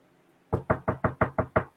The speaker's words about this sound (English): mind if I come in? Great. Okay. I have a squeaky door. I got a WD-40 that.